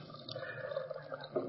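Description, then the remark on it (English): About 9 ounces of water pours steadily into a container for a second and a half, a soft continuous splashing trickle with slight bubbling swells, fairly quiet, with no voices. “This is just, you know, whatever, 9 ounces of water.”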